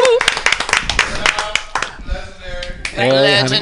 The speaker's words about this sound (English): Let's have a nice round of applause for him.